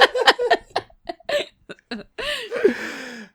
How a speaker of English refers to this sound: was teaching me how to burp on command. It's going well so far.